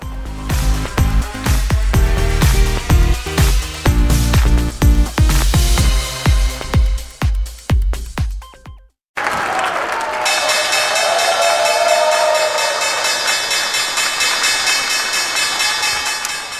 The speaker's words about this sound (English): ProShares ringing the opening bell at the New York Stock Exchange a few moments ago